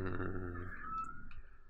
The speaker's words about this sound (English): In the world of PlayStation, hi, kitty cat. I hear a kitty meowing. She... That's fine. Stella was meowing,